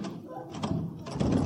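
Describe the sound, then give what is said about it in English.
A locked door is rattled and thumped repeatedly as someone tries to open it: a short burst of knocking and jiggling, then a longer, louder stretch of forceful rattling, with faint voices underneath. “Now, don't get panicky, Homer. We'll get it open. How? It's locked.”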